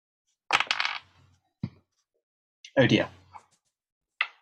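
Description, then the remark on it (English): A small hard object clatters across a surface in a few short rattling bursts, then a brief final tick, with quiet gaps between. It sounds fairly crisp, like a single die tumbling to a stop. “Six things, one dice.”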